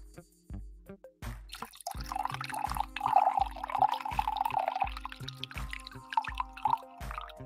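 Coffee, the last of the supply, is poured into a cup as a single weak pour: a thin, uneven trickle with dripping and soft glugging thuds, lasting several seconds before tapering off. No one speaks.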